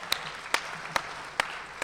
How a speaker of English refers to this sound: Let's give them another round of applause. We're so glad when you guys are here.